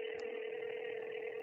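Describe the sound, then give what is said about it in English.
A steady, unbroken telephone line tone hums clearly for the whole moment as an outgoing phone call is placed, with no voices and no breaks, like a phone line connecting. “We're going to go out and try to get her on the phone here.”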